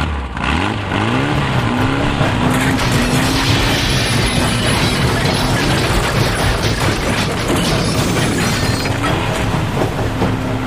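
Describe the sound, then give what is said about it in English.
A rock crusher's heavy engine roars and rises in pitch, churning with loud grinding, cracking and crunching as it breaks apart a gazebo billed as indestructible, continuous and harsh throughout, with no voices. “Stewart's gazebo and throw it inside this rock crusher and put it to the test. Fire it up!”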